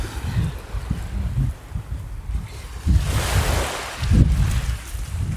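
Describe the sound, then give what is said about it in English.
Small waves wash gently onto a soft, light brown sand beach in Mexico in winter, with a soft hiss of surf swelling midway and fading, over low gusts of wind rumbling against the microphone. No one speaks. “Seagulls float gently on these really small waves.”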